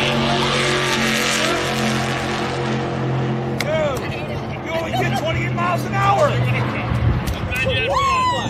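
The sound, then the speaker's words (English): A race car engine on a slower oval track roars at a steady, loud pitch, then its tone wavers and sweeps up and down as it revs up to about 5,000 RPM, with a murmur of voices mixed underneath. “They only got me up to 5,000 RPM.”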